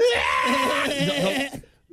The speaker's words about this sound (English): I've heard those things scream straight up like somebody getting murdered. Yeah, honestly, if you can't see the goats and you hear goats hollering, it's one of the most terrifying things you've ever heard. It's happening on a golf course.